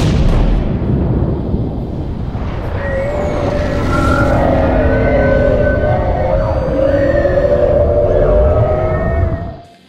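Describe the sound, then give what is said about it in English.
A loud, sustained underwater sonic blast from a sonar weapon, following its priming: a deep, churning roar overlaid with wavering, whine-like tones that persist for about ten seconds before cutting off abruptly. No one speaks. “Brian was so preoccupied with cataloging this sonic blast that he almost missed what else was there.”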